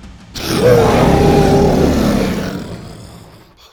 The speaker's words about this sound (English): Louder! Bo groaned again, but this time an actual roar bellowed around him.